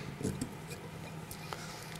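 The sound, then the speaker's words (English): A knife cuts through a beet bought at Chapel Market in Islington, in a few faint, scratchy crunches spread unevenly over two seconds against a low background hum, with no talking. “And what I'd like to do is to slice it open, and I'd like you to take a look at this amazing thing.”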